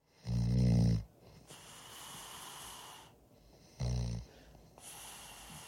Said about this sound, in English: The band was a little annoyed with him sleeping there in the studio, so they stuck a microphone in his face and recorded him snoring.